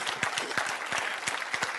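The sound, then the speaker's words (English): An audience claps steadily, a dense wash of many hands with a few sharper individual claps standing out, sustained and moderately loud throughout. “Somebody could clap your hands, be happy for me, could you?”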